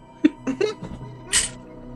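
A cat gives several short, chirpy meows in quick succession, followed by a brief breathy, hissing burst. No one speaks.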